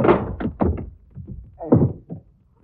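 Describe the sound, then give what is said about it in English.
A flurry of heavy punches knocking a man out lands in an uneven rhythm, a few dull thuds mixed with strained grunts, then a final solid blow before it falls quiet. “I just knocked him out.”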